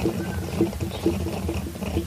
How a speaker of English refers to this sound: It also doesn't sound the same, the gurgling, which really makes me think there's something about the water.